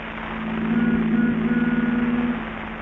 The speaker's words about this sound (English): The Benny rehearsal has just finished, and Phil is driving Jack home in his new convertible.